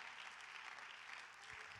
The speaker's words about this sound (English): Hallelujah. Come on, clap your hands.